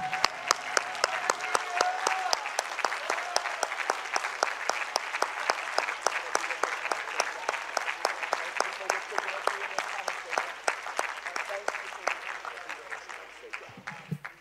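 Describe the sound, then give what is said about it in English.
A church audience claps hands unto the Lord after a prayer, in sustained, dense applause for about fourteen seconds, loud and steady throughout, with faint crowd murmur underneath and no clear speech. “Now clap your hands. Come on, if you really believe your prayer, clap your hands unto the Lord.”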